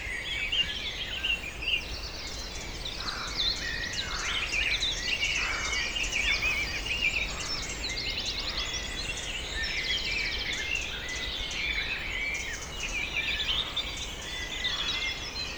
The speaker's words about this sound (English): I hope you can hear the thrush, its voice soaring in the midst of that chorus. It's a truly wondrous thing.